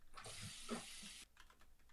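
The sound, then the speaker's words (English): Water gushes from a tap in a bathroom for about a second in a steady hiss as someone washes their hands. It then cuts off, leaving a few faint scattered clicks and rustles. “wash your hands.”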